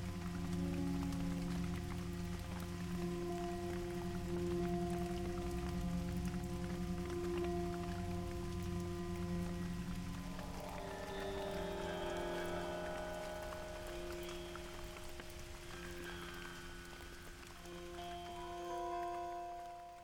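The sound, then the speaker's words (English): Steady rain pours continuously for the whole stretch, a dense hiss of drops with sustained low droning tones beneath it and no voices. “You guys leave, walk out into the rain, and I guess you guys are heading back to Atlas.”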